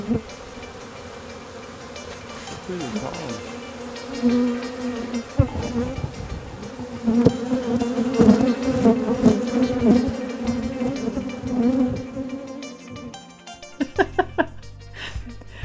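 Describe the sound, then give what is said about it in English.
Loud, close-up buzzing of many bees, a dense droning hum that wavers in pitch as insects pass near, continuing steadily for the whole stretch before a few sharp knocks at the end. “God, I can still hear those bees in my nightmares.”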